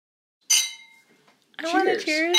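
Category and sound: household object, wine glasses clinking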